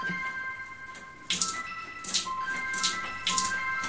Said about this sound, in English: I am going to wiggle. Splashing water all over the room.